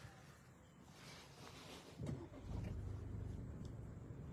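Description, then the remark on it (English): A car idles and creeps along in a slow traffic jam caused by black coyotes, its low engine rumble steady, swelling slightly partway through with a brief knock before settling into a fuller drone. “Causing a little bit of a traffic jam.”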